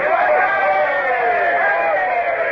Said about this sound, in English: Now, all up the side together and give a cheer. I want them to think we're a big boarding party. Ready? Now.